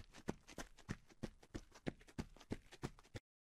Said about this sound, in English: And then just as the lighthouse begins to rotate its light away, you hear loud footsteps coming towards you.